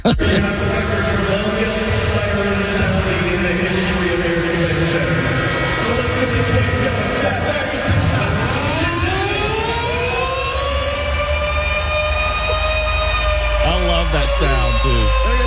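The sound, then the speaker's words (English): The Cincinnati Cyclones' loud mechanical siren at Heritage Bank Center in Cincinnati, on throwback night, winds up with a rising, steadily climbing wail, then holds a long, sustained ringing tone over a busy, noisy background. “We broke numerous records, starting with me on the Cyclone siren with the longest and loudest ring ever.”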